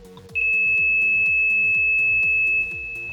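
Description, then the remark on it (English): A steady, high-pitched 2600 hertz sine tone sounds loudly and unbroken for about two seconds, then stops, layered over a repeating low pulsing pattern with regular faint clicks. “All right, here's a sample of the 2600 hertz tone. It's a sine wave sample.”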